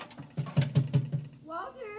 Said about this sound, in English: The pipes were knocking, and I'm just making sure the boiler hasn't exploded.